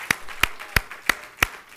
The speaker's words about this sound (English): Before you're seated, let's clap our hands, if you will, unto the Lord and give Him a hand clap of praise.